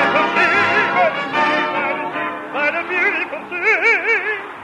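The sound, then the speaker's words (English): Seagulls flying over the water at a beach cry loudly and continuously, their wavering, honking calls overlapping in quick bursts for several seconds with no talking. “Just look at the birds flying over the water.”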